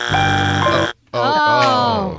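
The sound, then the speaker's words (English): A loud, harsh game show wrong-answer buzzer sounds in two blasts: a steady, rasping tone, a brief gap, then a second, longer blast that wavers slightly in pitch. “That's your first buzz.”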